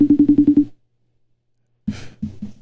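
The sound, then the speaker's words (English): A phone rings unanswered with a fast, buzzy electronic trill of about six quick pulses, pauses in silence, then starts ringing again with a rougher, noisier burst. “Well, he can't even answer the phone.”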